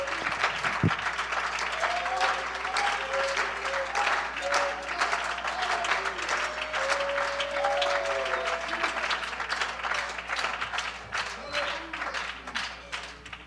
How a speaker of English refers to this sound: Oh, can we give Him a hand clap of praise this evening? Hallelujah.